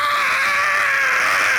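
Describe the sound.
A person vocally imitates the scream of a serpent raising its head: one sustained, high-pitched, shrieking wail held at steady loudness for nearly two seconds, piercing, with no other talk.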